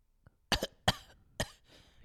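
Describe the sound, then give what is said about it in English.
Several deliberate, exaggerated coughs in quick succession, loud, with a small throat sound before them; a voice faking a cough as a joke rather than a genuine one. “You've that wasn't a real cough. That was literally a joke.”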